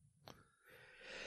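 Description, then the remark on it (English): A quick, muffled sneeze bursts out once, followed by a soft, rising breathy exhale. It's quiet, with no talking. “Sorry, that was a sneeze.”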